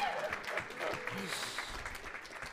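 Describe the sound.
A crowd applauds a scripture reader, a dense wash of overlapping hand claps that holds a fairly even loudness throughout, with a few murmured voices mixed in underneath.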